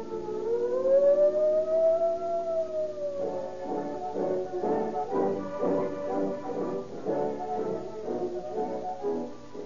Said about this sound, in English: And that siren shriek came from the official junior police siren whistle.